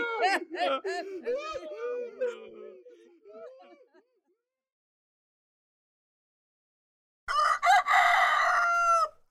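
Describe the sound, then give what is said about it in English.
A person imitates a rooster crowing, a loud, wavering vocal call, followed by a few seconds of silence and then a second bright, strained crow. “And that's what I'd sound like if I was a rooster.”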